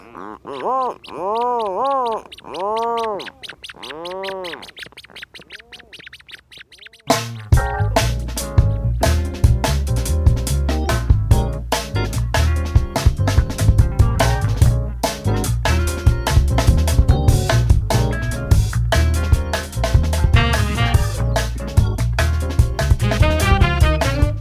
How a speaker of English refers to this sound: Jeff Rice recorded these birds with support from Acoustic Atlas at Montana State University.